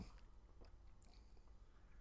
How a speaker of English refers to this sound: Just sip. Yeah, I did. That sounded like a big gulp to me. The bubbles went up my nose.